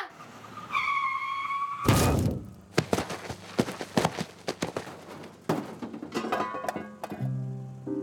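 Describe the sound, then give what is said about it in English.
Tires squeal in a loud, wavering skid for about two seconds as a car hits a deaf man crossing the street toward a station in a hit and run, then a heavy thudding impact bursts out, followed by scattered knocks and clattering bumps that trail off. “Unfortunately, all the man hears before the car's bumper connects with his body is... he is deaf, and now the victim of a hit and run.”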